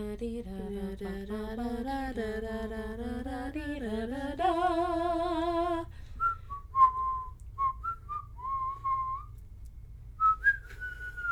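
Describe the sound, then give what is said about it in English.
A melody is first carried by a rich, buzzing voice, then continues as a thin, airy whistled tune of short, wavering notes, moderately quiet with no talking. “Do you breathe in to whistle?”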